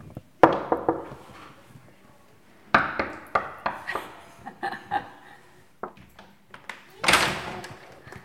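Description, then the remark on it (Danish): A few sharp, hollow knocks on a door come in short clusters with brief pauses between them, at the Den Gule Prik nursery in an old ground-floor apartment in Nørrebro, Copenhagen, followed by faint indistinct voices and a soft rustling burst near the end. “Vi stod lige banket på den anden side.”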